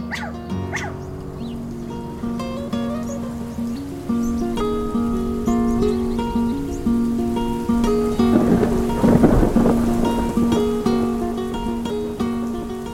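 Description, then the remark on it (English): A monsoon thunderstorm in Arizona: rain pours steadily while thunder rumbles, swelling into a loud crack of storm noise partway through, all beneath sustained, droning musical tones; no one speaks. “Longtime residents know that extreme temperatures bring our monsoon rains.”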